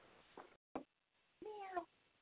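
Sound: cat meowing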